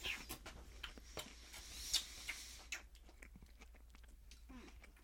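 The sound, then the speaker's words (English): Crunchy chewing of a breaded mozzarella stick, with irregular crisp bites and soft mouth sounds repeating over several seconds, no talking. “I'm sure everyone's loving hearing me chew through their car stereo.”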